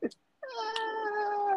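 A cat lets out one long, loud, drawn-out meow, its pitch sagging slowly toward the end, after a brief soft sound and a short pause.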